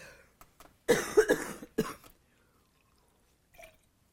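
A short burst of harsh coughing, two or three rough hacks in quick succession, followed by quiet and a faint throat sound near the end.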